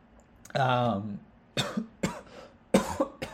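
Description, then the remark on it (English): A voiced throaty groan is followed by a series of four short, sharp human coughs spaced unevenly over a few seconds, fairly loud against a quiet background. “I guess I coughed, so I apologize if you heard that.”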